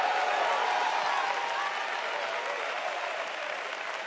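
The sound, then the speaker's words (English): An audience at an apostolic church service claps together in sustained, dense applause that holds steady for several seconds, with voices shouting hallelujah in the crowd beneath it. “Oh, clap your hands and shout hallelujah.”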